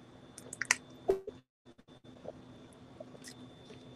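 Wet handling noises: a sharp plastic crinkle and splash, a brief silence, then soft gulps and swallowing sounds as someone thirsty drinks water, with no talking.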